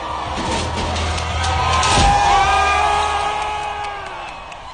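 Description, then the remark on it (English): A crowd of protesters cheers and whoops outdoors as they topple the statue of Edward Colston, with voices shouting over a steady roar that swells in the middle and slowly fades, rising whistles and yells cutting through the din. “The crowd of protesters cheered.”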